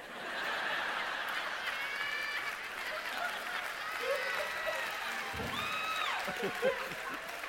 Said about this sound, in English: You know what? You can applaud all you want, but... It's a fair question.